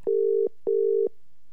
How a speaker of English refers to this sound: See if we can get him on the line. Okay, it's ringing. That's always a good sign.